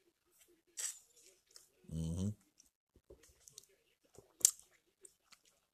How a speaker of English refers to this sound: Take a sip of coffee before I even start this shit, because I know I'm about to fucking go off on a lot of shit.